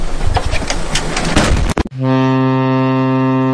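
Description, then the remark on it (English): A burst of noisy, rushing sound cuts off abruptly, replaced by a loud, steady, deep horn blast like a ship's foghorn, playing as a viewer's custom super chat alert sound with no one talking. “Rusty Rivers with a super chat. He's got his own custom super chat button.”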